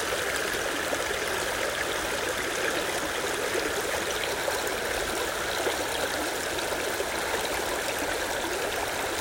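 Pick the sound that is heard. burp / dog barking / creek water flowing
creek water flowing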